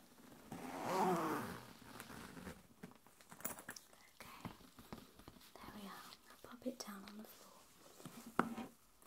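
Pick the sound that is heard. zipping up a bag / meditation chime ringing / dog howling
zipping up a bag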